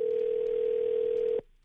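A steady telephone dial tone, heard while placing a call, hums loud and unbroken over a phone line for over a second, then cuts off abruptly into near silence.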